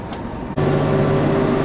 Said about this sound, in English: What the fuck is with this traffic?